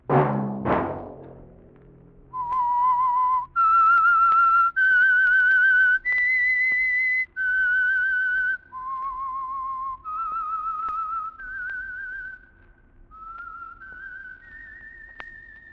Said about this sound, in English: Let that whistle be your signal for the Signal Oil program, The Whistler, each Wednesday night at this same time.